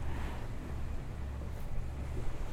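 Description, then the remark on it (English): Steady low engine rumble of a boat on open water with whales around it, wind buffeting the microphone and a broad hiss of sea noise throughout, no voices. “And we've seen a couple of other whales off the port side of the boat.”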